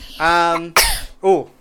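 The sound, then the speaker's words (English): A single loud sneeze: a drawn-out voiced build-up, a sharp hissing burst, then a short voiced trailing sound. “Bless you, I guess.”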